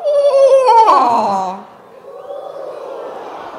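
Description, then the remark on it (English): An audience imitates a screech owl's whinny, a loud, high-pitched trill that starts up high and descends for about a second and a half before fading into a murmur of chatter and laughter. “This owl sounds up high, and then it drops down. So it makes like a whinny sound.”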